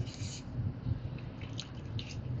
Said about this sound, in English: Water break, sorry about that.